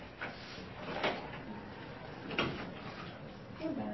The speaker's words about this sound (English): Yeah, is it noisy out there? I don't know. Everybody should be in their class right now. When do you guys try to open that back door and see what's happening out there? Yeah, if it's loud, then we just have to deal with it.